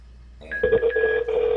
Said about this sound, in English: So you guys are going to hear the phone ring.